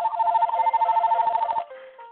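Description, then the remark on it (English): A telephone rings with a bright, warbling electronic trill, loud, repeating rapidly for about a second and a half before cutting off to a quieter tone, as a woman takes a phone call. “Let's mute her while she takes her phone call.”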